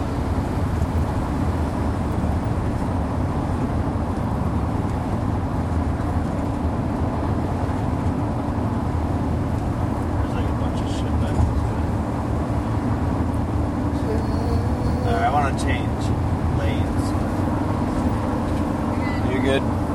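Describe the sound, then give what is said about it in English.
A car drives past on a road with several lanes amid a constant, heavy road rumble, as if heard from inside another moving vehicle. Its passing blends into the steady traffic noise rather than standing out sharply. “After this car comes through.”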